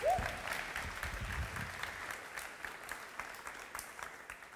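An audience applauds, a dense wash of many hands clapping that swells at the start and holds steady for several seconds. A brief voice rises at the very beginning, with faint crowd murmur underneath.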